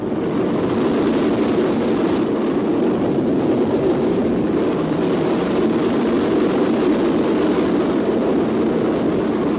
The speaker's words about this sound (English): The Telstar is sent aloft from Cape Canaveral atop a Thor Delta rocket in a joint industry-government effort. The Space Administration team handles the launching for AT&T